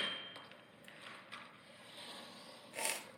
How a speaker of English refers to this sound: The sound of the slap shot, the blades, the whole nine yards. And that's why you go to a hockey game. The sound of a check into the boards.